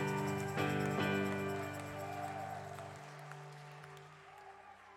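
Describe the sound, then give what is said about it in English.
A church audience claps steadily in a round of applause for Jesus beneath sustained organ-like keyboard chords, the applause fairly full at first and gradually thinning as the music continues. “Can we give our Jesus a round of applause and a shout of praise?”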